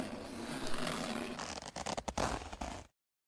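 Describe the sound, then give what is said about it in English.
The zipper of a jumpsuit, similar to those worn in Cannonball Run, is pulled all the way down, a steady raspy rip breaking into quick, uneven clicking teeth before stopping abruptly. No one speaks. “I named this because it has a zipper that goes all the way down.”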